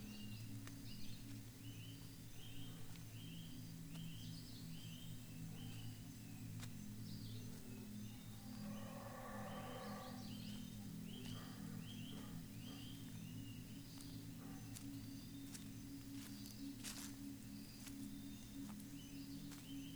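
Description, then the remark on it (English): Monkeys howling in the distant rainforest canopy in a low, continuous droning chorus, with faint insect chirps and occasional bird calls layered above it. “Which must have been discarded by the monkeys that you can hear howling in the distant forest canopy.”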